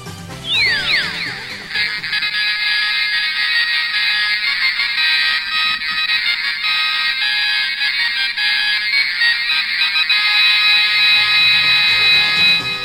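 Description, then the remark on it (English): Tinny, bass-less electronic music from Disneyland's Electrical Parade plays from a 1-inch speaker inside a 5-inch plush toy shaped like the parade's turtle float: a bright, buzzy synth melody that opens with quick rising swoops, then runs steadily and loudly for about eleven seconds. “Now, if that sounded kinda tinny and low fidelity, it's because it's coming out of about a 1-inch speaker buried inside a little 5-inch plush toy.”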